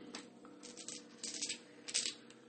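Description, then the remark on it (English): Four dice rattle and clatter in short bursts as they are rolled for a speed roll in a board game, a few quick clicking rolls spread over a couple of seconds, fairly quiet with a low steady hum underneath and no voices. “I have 4 dice.”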